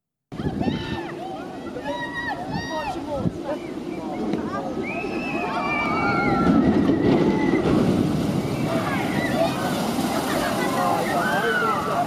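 A passing boat's wake surges water that sloshes and splashes across a bridge at a theme park, the rushing noise swelling midway, while a crowd of people on the bridge shriek and shout over it.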